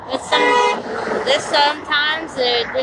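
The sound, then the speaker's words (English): Busy street traffic with cars going by, punctuated by several short, fairly loud horn toots in quick succession, some overlapping, over a steady low road rumble. “It's just seeing some cars pass by and forth.”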